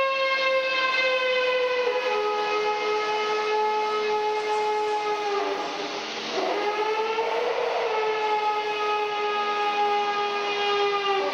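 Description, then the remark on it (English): A steam train blasts out steam in a loud, sustained rush, with a steady multi-toned whistling ring over the hiss that briefly wavers midway before resuming. No one speaks. “It's just shooting steam out of the fucking...”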